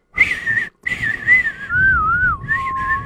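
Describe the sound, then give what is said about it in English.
A person whistles a wavering, sliding melody, the classic spaghetti western theme from The Good, the Bad, and the Ugly, with short breaks between phrases and a long gliding note in the middle; no talking over it. “that classic spaghetti western sound from The Good, the Bad, and the Ugly.”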